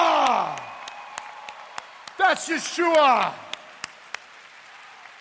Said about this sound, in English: If you're going to clap, clap with a roar.